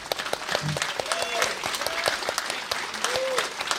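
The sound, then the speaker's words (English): A live audience claps steadily in dense, rapid applause for Mike, the editor of the Country Squire episodes, with occasional whoops and cheers rising above the sustained clatter of many hands. “We've got to give a major shout out, and I'm going to ask you guys to give the biggest applause for Mike, our editor, who has worked on all of these episodes of Country Squire.”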